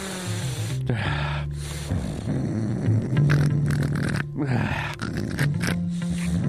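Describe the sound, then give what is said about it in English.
A loud, rough snorting sniff of an uncapped Sharpie permanent marker comes in a few harsh, breathy bursts, with a low droning tone holding steady underneath throughout. “Oh, that was more like a snort, really.”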